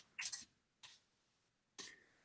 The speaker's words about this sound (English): You can hear me typing on the computer.